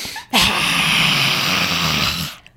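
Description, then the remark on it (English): A single long, forceful breathy exhale, a lion's breath, with a raspy, roaring edge, loud, sustained for about two seconds before cutting off; no talking. “Actually, I feel like that lion's breath is good.”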